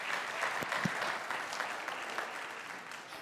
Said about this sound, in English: Thank you guys for playing. Can I get a round of applause for our contestants?